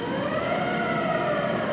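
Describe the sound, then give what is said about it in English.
A loud, steady factory warning siren wails continuously, its tone slowly bending in pitch, against a dense industrial hum with no voices. It sounds while an overhead crane lifts a heavy object in a single-floor factory that makes steel containers for spent nuclear fuel. “A siren goes off when one of these heavy objects is in the air.”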